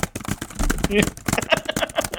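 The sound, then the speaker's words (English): A voice mimics rapid keyboard typing with a quick, uneven run of clicky, clacking mouth sounds, fairly loud, lasting about two seconds. “can you just stop typing? This is really like an important part of the film.”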